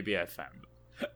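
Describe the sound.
A short, low, throaty burp bursts out, followed by a brief hiss and a fainter voiced sound a moment later.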